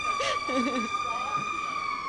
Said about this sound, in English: It's the reaction to LIV. People, it's sirens everywhere.